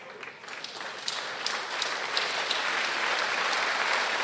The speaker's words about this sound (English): You just stand up and clap. Is the hand paining you? No. Is it disturbing you? No. Is it heavy? No. Clap so that you can receive it.